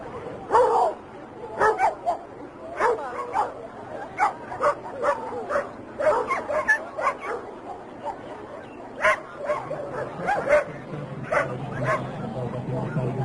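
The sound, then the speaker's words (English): A dog barks and yips over and over in quick, irregular bursts, fairly close and loud, with sharp high-pitched yelps mixed among the deeper woofs throughout. “It's just a dog.”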